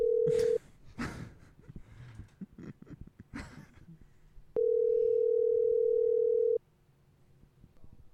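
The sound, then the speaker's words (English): A loud, steady telephone dial tone sounds briefly, breaks off for a few seconds of rustling and clattering noise, then returns as a longer unbroken two-second tone. “Calling him again.”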